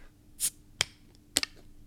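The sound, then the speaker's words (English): Heineken Silver beer bottles being opened: a brief airy hiss followed by two sharp, bright clicks of caps popping off, with quiet gaps between and no talking. “Let's crack them.”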